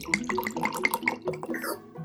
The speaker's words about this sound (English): bust out my alchemy jug, give myself a nice little hair of the dog, little swig.